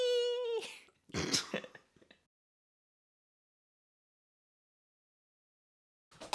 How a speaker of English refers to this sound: Yeah, because I was just coughing straight into the microphone. Oh, why were you doing that? Because I was adjusting it and then I had to cough.